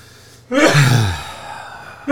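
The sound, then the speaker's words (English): A single loud sneeze bursts out abruptly, a voiced cry that drops in pitch and trails off into a breathy hiss, with quiet before it and no talking. “Bless you.”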